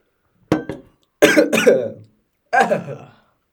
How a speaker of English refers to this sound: Only idiots cough after drinking water. And people with a cold.